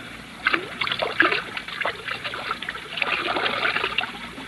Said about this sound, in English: Ah, there's the whiskey, still half full. Pour most of it out, so that it will look as though we had even more to drink.